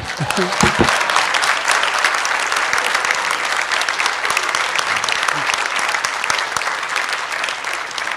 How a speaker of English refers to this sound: You decide whether you want to applaud or not. Who wanted to applaud?